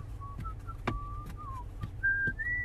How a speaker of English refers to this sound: You know the song I'm whistling? No. The Yellow Rose of Texas.